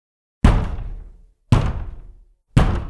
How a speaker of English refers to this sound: They were banging on the door, waiting, like literally waiting on me to come.